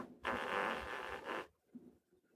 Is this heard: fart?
yes